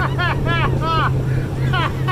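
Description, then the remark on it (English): A motorboat engine drones steadily and loudly throughout, recorded from the boat as a man in Minnesota water-skis on 11-foot stilts attached to skis, with wind buffeting the microphone, while a man's voice calls out excitedly in several bursts over the engine noise. “Not just water skiing, but on 11-foot stilts attached to skis. This is him doing it from the boat.”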